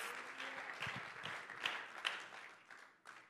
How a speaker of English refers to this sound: Come on and clap your hands and give the Lord some praise today.